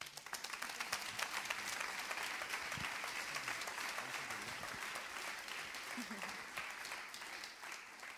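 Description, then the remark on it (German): An audience gives a big round of applause for a person for about eight seconds, a dense, even wash of many hands clapping with a few faint voices mixed underneath. “ein mega Applaus.”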